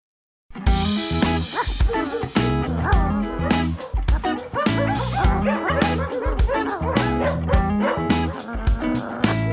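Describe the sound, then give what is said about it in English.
A dog barks and yips repeatedly in quick bursts, mixed with higher whimpering sounds, loud throughout, over a steady tonal backing that may be music. “Yes, I am a dog.”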